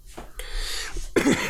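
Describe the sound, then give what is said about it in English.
A harsh cough: a breathy, rasping burst followed by a shorter, throatier voiced hack, fairly loud with no talking around it; the cough came back after the person walked their dog in very cold weather. “And literally, I haven't had a cough in a while, and now the cough's been back ever since I took my dog on a walk today.”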